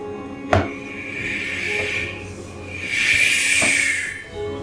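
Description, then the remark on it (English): A steady, airy hiss like wind whistling through a narrow gap, as air flows out from behind a fireplace, swelling and fading over several seconds, with a couple of sharp knocks and a faint tonal whistle underneath. “Kind of like a breeze in a crack or something.”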